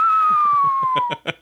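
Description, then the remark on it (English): A man whistles an imitation of a bird call, wetting his whistle in between: one long, steady, high note that slowly slides lower, over a string of rhythmic low voiced puffs, ending in a few sharp breathy bursts. “you are not a good bird call.”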